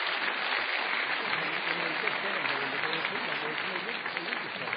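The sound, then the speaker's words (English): A crowd at an Intelligence Squared U.S. debate applauds steadily for the full stretch, a dense, even wash of clapping from many hands that holds a constant, fairly loud level without pauses or voices breaking through. “Can you give me another round of applause?”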